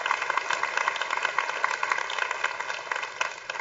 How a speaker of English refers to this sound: Y'all are clapping like somebody just chipped in from the 13th fairway.